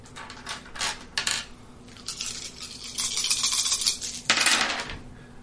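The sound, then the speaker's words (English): Several dice are rolled, clattering and rattling against a hard surface, with a few sharp clicks followed by a longer tumbling rattle and a final burst of clacks, with no one talking. “And roll that many dice.”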